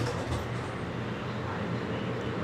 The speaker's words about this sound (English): Not far from the camp, a light rail train is pulling in. In the last few years, more people in need have ridden this train to look for a better life in Denver's suburbs.